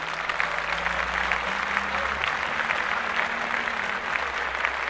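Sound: applause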